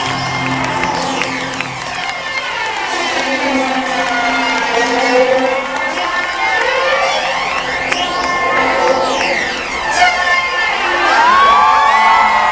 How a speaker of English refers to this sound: And there goes the lights. I love this. Listen to the crowd. Isn't that cool?